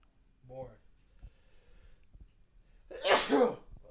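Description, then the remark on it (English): A single sharp, loud sneeze bursts out after a brief voiced sound and a few quiet clicks, with no words spoken. “I did not mean to sneeze for suspense there.”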